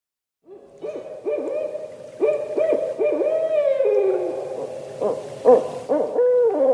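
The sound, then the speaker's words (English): A barred owl calls loudly, a rapid series of rising, swooping hoots that build into a raucous, wavering caterwaul, with no talking over it. “Do you recognize that call? That's a barred owl.”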